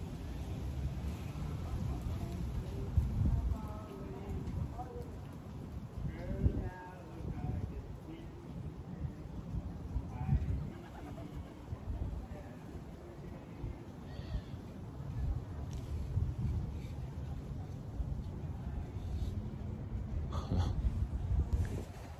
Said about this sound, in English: There's pigeons here too.